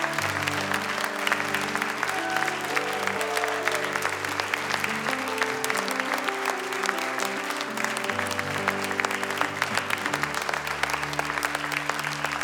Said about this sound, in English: Mums, stay seated, and the rest of us, we're going to give you a great clap of encouragement. Come on, musos and singers, you can come. Come on, let's clap today. Thank the mums. Oh, come on, that's a half-hearted clap.